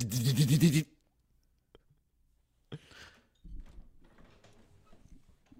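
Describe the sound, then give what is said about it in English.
A loud, buzzy mechanical burst as a dot matrix printer prints, its head rattling across a line, then a pause with faint clicks before quieter scraping, whirring printer movements continue. “Crowder's got like a dot matrix printer.”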